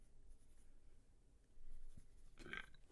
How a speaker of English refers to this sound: I'm literally writing that down as I burp.